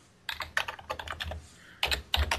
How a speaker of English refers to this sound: Say something. We don't need dead air. All I hear is you typing. We have to have you typing at least once during every episode.